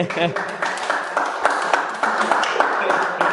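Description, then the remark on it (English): A crowd breaks into applause in the show, a dense, steady wash of many hands clapping with sharp individual claps popping through, and a brief voice at the very start. “So that's how you get applause in the show.”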